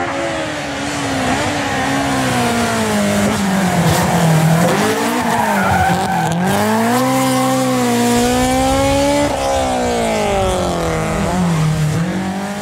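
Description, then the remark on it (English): A race car with a K24 engine, a six-speed sequential gearbox from an old Ford supercar and a Hilux diff revs hard and continuously, its pitch sweeping up and down through gear changes, with tires squealing and skidding throughout. Loud, with no talking. “a K24 with a 6-speed sequential out of one of the old Ford supercar gearboxes, Hilux diff. So it's got all the gear on the thing, and it's got the latest Helltech computer and dash in it, and it's gone way beyond.”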